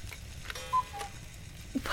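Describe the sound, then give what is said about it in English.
A custom-made Christmas cuckoo clock in a shop ticks steadily, its small mechanical clicks soft, with a couple of faint bell-like tones and a low background hum. “That would be our Christmas cuckoo clock.”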